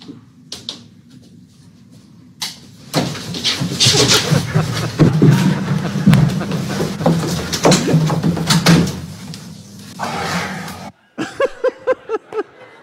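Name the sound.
door being closed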